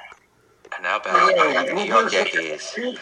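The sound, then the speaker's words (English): Voices come through with a hollow, smeared quality, as if sound from headphones is bleeding back into a nearby microphone and echoing under the talk, steady and moderately loud. “So echoey.”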